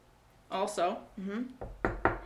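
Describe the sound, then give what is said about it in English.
A voice speaks briefly, then a few quick knocks on wood follow in a short, uneven run, sharp and fairly loud. “Knock on wood.”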